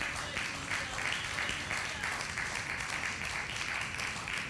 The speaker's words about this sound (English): Go ahead and clap. That's all right.